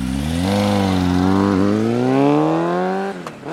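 A motorcycle engine starts up and roars loudly, its pitch climbing steadily as it accelerates and drives away for a few seconds before cutting off abruptly. No voices are present.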